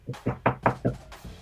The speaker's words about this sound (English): Can I get a knock at the door, please?